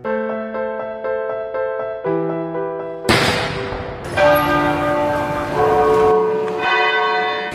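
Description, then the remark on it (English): A church bell tolls repeatedly in mourning for Queen Elizabeth, each strike ringing out with long, shimmering overtones that overlap. Partway through, a sharp booming burst of a 96-round gun salute cuts in and the pealing grows fuller and louder. “Bell tolls, 96 rounds fired in a gun salute, and thousands here at Buckingham Palace today as the new king,”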